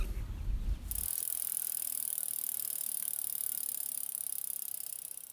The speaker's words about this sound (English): I'm on a 12.5-mile bike ride around Buell Water in Kent, and you are listening to Queer Out Here.